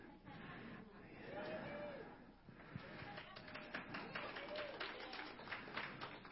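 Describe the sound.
A crowd at a worship service cheers and claps steadily throughout, with raised voices and a few whoops rising over a dense, continuous patter of hands.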